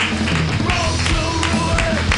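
An audience claps steadily for a couple of seconds, a dense, even patter of hands at moderate loudness with a faint tonal murmur underneath and no clear cheering.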